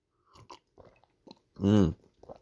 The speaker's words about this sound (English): I'm having a bit of a brain fart this morning. Not enough coffee. Pause while I take a sip, good people.